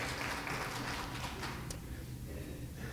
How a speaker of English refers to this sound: Good. You can clap. It's fine.